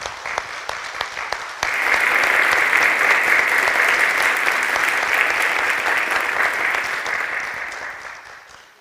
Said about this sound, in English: Are you staying for us? That man deserves applause.